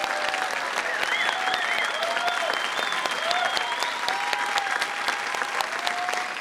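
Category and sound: crowd, audience cheering and applauding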